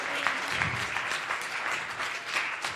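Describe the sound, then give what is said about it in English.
A crowd claps steadily, a dense wash of many overlapping hand claps with no clear rhythm, holding at an even, moderate loudness for the whole few seconds. “Let's just all give Brother Wendell a hand clap.”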